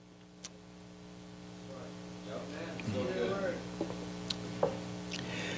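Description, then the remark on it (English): Someone takes a quiet sip of water because their throat dries up after tongue cancer, with soft wet gulping and a few small mouth clicks over a steady low hum. No one speaks. “As you can tell, I had to have that drink of water.”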